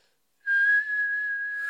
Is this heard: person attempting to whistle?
yes